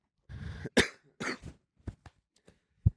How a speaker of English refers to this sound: It's cough.